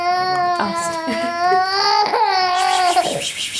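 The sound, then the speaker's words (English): A young girl cries loudly, a sustained wailing sob that rises and breaks into shorter gasping bursts over a few seconds, with no other voices. “that was not your child crying, as Nicole's”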